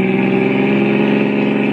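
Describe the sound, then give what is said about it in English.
A car engine hums loudly and steadily, its deep harmonic drone holding level as the car accelerates to pass a truck, with no voices over it. “Pass that truck, please.”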